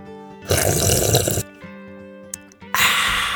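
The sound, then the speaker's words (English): Two loud, wet, airy slurps from a drink, the first lasting about a second and the second shorter, separated by a brief lull with a low steady hum. “That was a decent slurp.”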